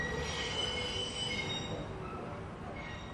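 A train rolls past with high, metallic wheel squeal over a steady low rumble, loud throughout, easing slightly toward the end. No one speaks.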